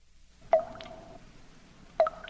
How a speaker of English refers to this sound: I love the sound of dripping blood.